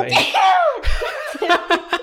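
A strained, rising vocal sound bursts into a loud, explosive sneeze, followed by a few short, rhythmic bursts of laughter close to the microphone.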